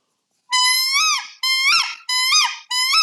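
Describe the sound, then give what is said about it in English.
A peacock call blown on a turkey call: four loud, shrill, nasal squeals in quick succession, each holding a high pitch before bending upward and dropping away. No talking. “So a peacock call would be like this.”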